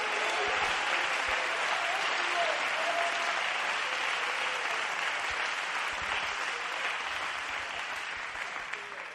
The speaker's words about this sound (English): You ought to clap your hands unto the Lord, all ye people, and you ought to thank God for his word today.